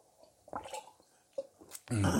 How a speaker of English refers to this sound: I need a little sippy sip of my coffee.